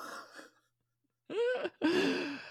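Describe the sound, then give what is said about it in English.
Harsh coughing: a short throaty burst, a brief pause, then two rough, strained coughs in quick succession, the last trailing off with a raspy throat-clearing sound. “You're going to make me cough.”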